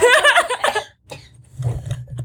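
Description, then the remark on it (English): A burst of harsh, rapid coughing, followed by a brief pause and then strained, sputtering throat sounds like someone choking and struggling to clear their airway after swallowing a sip of water wrong. “She's actually choking. It's not nicotine. I swallowed wrong.”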